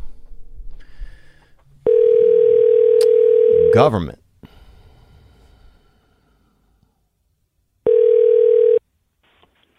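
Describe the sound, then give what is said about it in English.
A steady electronic ringback tone from an outgoing phone call sounds twice, a long burst, a pause, then another, with a man talking briefly around the first ring. “Nobody want to answer their phone anymore.”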